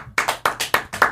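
People clap in a quick, steady burst, about six sharp, bright claps in just over a second, loud and unaccompanied by any talking.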